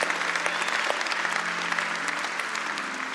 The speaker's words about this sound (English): Next week is Mother's Day weekend, and we cannot, we can clap for all the moms for Mother's Day weekend.